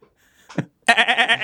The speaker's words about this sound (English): Oh, and this is my goat.